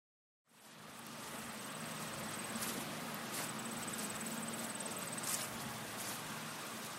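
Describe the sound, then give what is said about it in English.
A soft, steady buzzing drone of bees among the trees of an apple orchard in autumn hangs over a hiss of outdoor ambience with a crisp breeze, with a faint high insect-like whine and a few small clicks now and then. “There's a crisp breeze in the air, the sound of bees buzzing happily amongst the trees of an apple orchard.”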